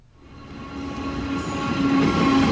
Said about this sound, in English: Standing off the track, TRA engineers wave to the train as it passes. At last, the Hodong's West Main Line is ready to resume service.